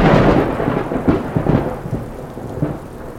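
A thunderstorm rumbles with low, rolling thunder over a steady wash of heavy rain, the thunder swelling and fading in several booming pulses with no voices.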